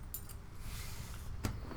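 Keys jingle in a few brief, bright metallic bursts with gaps between them as someone zips things up, fairly quiet over a low steady background rumble. No one speaks.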